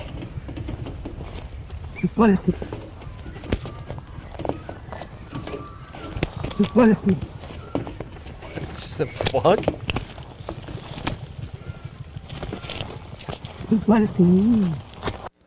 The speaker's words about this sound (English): The fact that the thing that this duck is saying is "you bloody fool" is perfect.